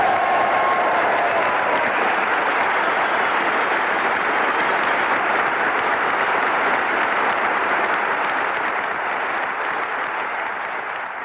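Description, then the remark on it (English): A large crowd gives a long, steady round of applause for the honored guests, the men who flew the B-52s in, loud dense clapping that holds for about eleven seconds and eases off only slightly at the end. No one speaks over it. “But I can tell you this, after having met each one of our honored guests this evening, after having talked to them, I think that all of us would like to join in a round of applause for the brave men that took those B-52s in and did the job.”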